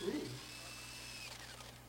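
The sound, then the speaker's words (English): A steady mechanical whir with a gritty grinding edge as a hole cutter that is too big spins the stadium itself, sanding it against a wooden picnic table; it runs continuously at an even, moderate level, with a brief low voice-like murmur at the start. “Also, notice we're sanding the picnic table here quite well.”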